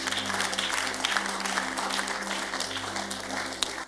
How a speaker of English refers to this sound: The way you are clapping, we are not in the conference room.